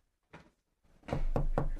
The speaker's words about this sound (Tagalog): Sabi ng sandali lang eh! Sino ba itong katok ng katok? Nakakaabala sa pagluluto ko. Bakit ba ang aga-aga? Katok ka ng katok?